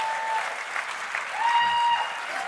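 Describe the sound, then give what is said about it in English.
A roomful of people at a church in Ankeny, Iowa, claps steadily for a pastor, a dense, continuous wash of applause that holds at a moderate level from start to finish, with a faint sustained tone threading through it. “I'm glad to see your wife clapping.”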